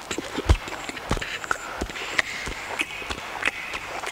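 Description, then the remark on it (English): A voice imitates a cow sitting under a tree chewing grass, with a steady series of crisp mouth clicks and smacks, repeating about every half second without any talking. “And the cow is just sitting under a tree, just chewing grass like this.”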